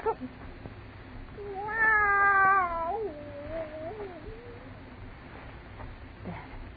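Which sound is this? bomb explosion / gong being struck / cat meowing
cat meowing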